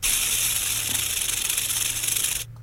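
A rattlesnake's rattle: a steady, dry, high-pitched buzzing hiss that holds loud and continuous for over two seconds, then cuts off abruptly. No one speaks over it.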